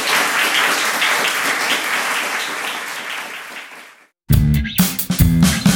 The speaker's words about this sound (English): Can I have a round of applause for these two amazing critics? Thank you.